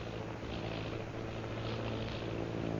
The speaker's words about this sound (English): Sounding like airplane. Airplane? Holy St. Patrick.